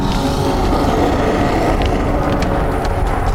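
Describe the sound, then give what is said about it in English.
A loud, deep creature roar echoing from outside rumbles steadily for a few seconds, thick with low-end growl and faint higher rasping overtones, with no voices over it. “All right, you guys hear another one of those incredibly loud, deep roars echoing from outside.”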